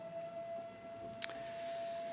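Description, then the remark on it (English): A faint fire siren begins and holds a steady tone throughout, with one brief sharp knock partway through and no one talking. “As the fire siren begins,”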